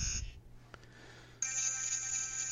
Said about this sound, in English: That's the buzzer going on. Is that a bad idea? Is that what you're trying to tell me?